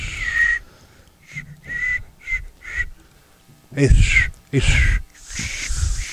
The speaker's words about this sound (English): That was me trying to whistle. Denture whistle.